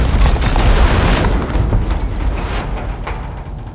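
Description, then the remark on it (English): A huge layered movie explosion sound effect, built from a thump, mid-range, high frequencies and debris, hits at once with a deep, booming low end and bright crackling debris, then rolls into a long rumbling tail that slowly fades. No voices are present. “And then here's what a movie explosion sounds like.”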